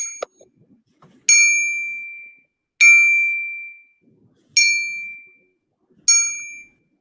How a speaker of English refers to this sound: nose deep in his book, he vaguely hears the dinner bell being rung in the workhouse. He looks up as if he has heard it, but he focuses on the actual scene. The ward of the poorhouse stands in the pool of light at the far left, slowly ringing a bell.